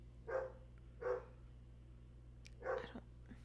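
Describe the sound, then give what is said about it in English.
Three sharp dog barks ring out at night, two close together and a third after a short pause, over a low constant hum with no one talking. “Well, we can't have them barking at this time of night.”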